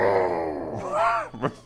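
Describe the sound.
A person imitates a low, rumbling inner growl with a voice, a sustained throaty groan that rises and falls over about a second and a half, ending with a couple of short breathy bursts.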